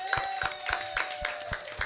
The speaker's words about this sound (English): So let's, without any further ado, I want to bring on our expert of this evening. Please give a warm welcome applause